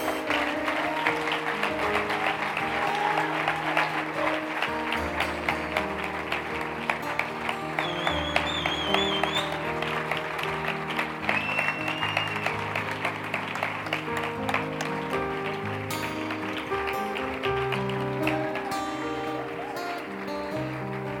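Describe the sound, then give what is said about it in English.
Steady, dense applause from a crowd as people come forward to the front for prayer, lasting over twenty seconds, with sustained music chords playing underneath and a few high whistles rising midway. “Can we give them a round of applause as they come?”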